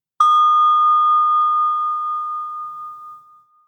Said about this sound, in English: Let's give another sound of the bell here while we're sharing space with one another.